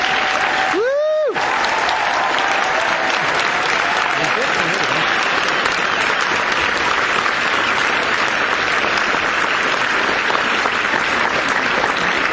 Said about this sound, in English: any aspect to where you've contributed to this amazing show, please stand up, and everyone else, please give them the round of applause they deserve.